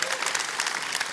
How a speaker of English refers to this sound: And first things first, can we give another round of applause